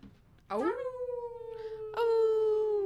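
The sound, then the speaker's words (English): A person mimics a wolf howl, the voice sliding up into a long, steady wail, then breaking into a second loud sustained howl. “Make a wolf noise.”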